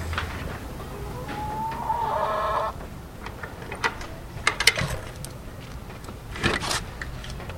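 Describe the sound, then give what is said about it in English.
Three hens cluck outdoors in a backyard chicken coop in the Norwood section of the Bronx, a drawn-out rising call followed by scattered short, sharp clucks over a steady background hum, with no one talking. “They built a chicken coop in their backyard and bought three hens to go with it.”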